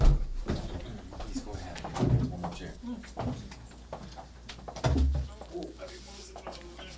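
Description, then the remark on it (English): A chair being fetched and moved: scattered wooden knocks and scrapes, with two heavier thumps as it is set down, and faint voices in the background. “Yeah, I'm going to get one more chair real quick.”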